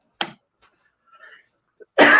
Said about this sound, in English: And I'm only going to say that because I'm about to cough.